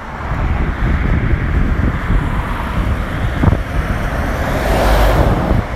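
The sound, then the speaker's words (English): A heavy lorry rumbles along a road, its low engine roar and tyre noise swelling as it passes, mixed with wind buffeting the microphone. “Other times it can be completely packed, and when it's packed, it's lorries and trucks. There's another one.”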